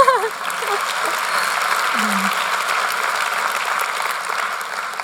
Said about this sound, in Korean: 박수 쳐주셔도 됩니다.